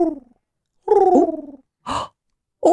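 A pet armadillo named Arnold makes purring, kitten-like sounds in a few short bursts: a longer warbling purr with wavering pitch, a brief rougher burst and another purr starting at the end, with silent gaps between.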